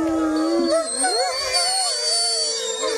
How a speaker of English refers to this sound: It sounds like you got a coyote.